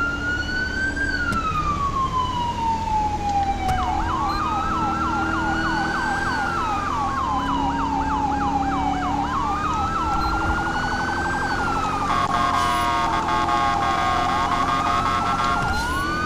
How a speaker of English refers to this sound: Really gotta change that siren. Why? I swear it only happens when I'm driving. I've never had it happen while I'm walking. It's always when driving.